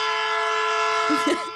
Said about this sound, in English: A train horn. Brilliant.